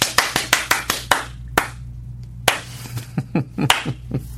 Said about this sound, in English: I'll start with a fast clap. The Brubaker clap. And then slowly make it a slow clap. So I'll start fast.